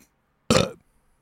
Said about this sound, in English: I burped.